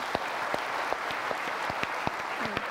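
An audience applauds university students steadily, a dense wash of clapping with a few sharper, distinct claps standing out, moderately loud and sustained throughout with no voices.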